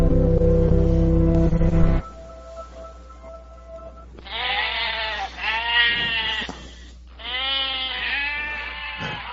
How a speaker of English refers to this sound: Are those goats there or not there? I'm not sure.